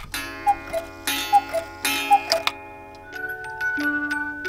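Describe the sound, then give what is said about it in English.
A clock in a clockmaker's shop in North Wilmington, Massachusetts ticks in a slow, steady rhythm, each tick sharp, while bright sustained chime-like tones ring alongside and the clock plays a soft melody toward the end as its figures turn and dance. No one speaks. “who's going to keep it and all the other timepieces they care for ticking when they retire?”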